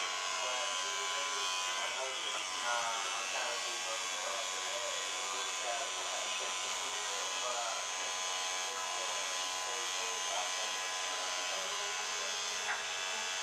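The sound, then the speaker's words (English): An electric hair trimmer buzzes steadily for the whole stretch, a bright, even motor whine with faint voices murmuring underneath. “With the trimmer, should see it sharper.”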